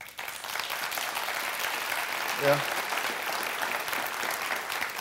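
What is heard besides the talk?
audience applause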